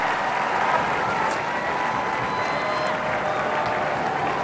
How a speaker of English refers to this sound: The armed forces giving a round of applause.